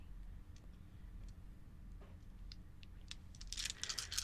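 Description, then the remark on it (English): Many dice clatter and rattle across a hard surface, a few scattered clicks building to a dense burst of tumbling at the end, with no one speaking. “Some dice there. Obscene number of dice.”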